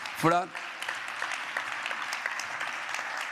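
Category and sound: crowd, audience applauding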